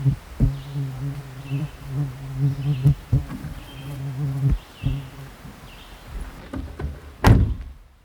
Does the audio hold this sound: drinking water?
no